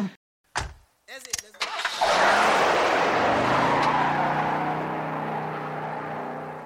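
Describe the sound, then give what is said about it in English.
A car engine cranks and struggles to start: a few short, sputtering bursts, then a loud, sustained grinding roar that holds steady before easing slightly at the end. “you can hear it trying to turn over.”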